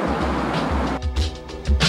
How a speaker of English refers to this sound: And with the waves in the background.